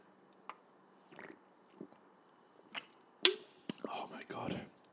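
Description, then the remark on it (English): Quiet sipping from a drink: scattered wet mouth clicks and small slurps over several seconds, ending in a longer gulping swallow, with no talking. “Okay, mouth's a bit dry, sip time.”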